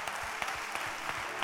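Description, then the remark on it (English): An audience claps their hands together in a dense, steady burst of applause for a woman, many hands striking at once with a few sharper claps standing out, lively. “Oh, clap your hands for this beautiful woman.”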